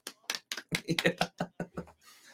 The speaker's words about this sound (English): Congrats. Golf clap.